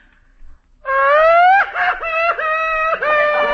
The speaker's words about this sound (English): She's a laughing and a crying. Oh, you boob. She's a crying.